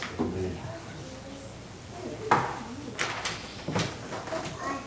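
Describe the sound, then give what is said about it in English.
A sudden sharp sneeze bursts out over quiet background sounds, followed by a few softer breathy noises. “Bless you.”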